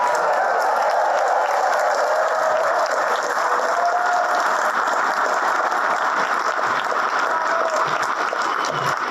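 A large crowd applauds steadily, dense clapping filling the space with scattered cheers and whoops rising above it, sustained and loud throughout without a break.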